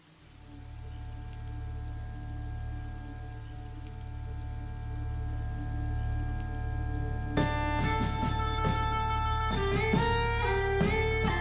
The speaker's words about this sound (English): I'm going to shout. I'm going to shout back over the rain.